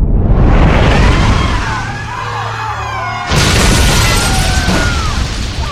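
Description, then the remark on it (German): A loud, rumbling crash with heavy booming, splintering and a dense, roaring wash of noise as a whale rams a steamship, making it rock violently, dipping briefly before a second surge of crashing impact noise; no voices, sustained throughout. “Und krachte mit solcher Wucht gegen die Lady Wexham, dass der Dampfer heftig in Schwanken geriet. Es dröhnte und splitterte.”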